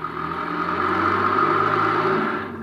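A car engine hums steadily as a car comes out of an alley, a low droning rumble with a whirring mid tone that holds for a couple of seconds before easing slightly. No one speaks.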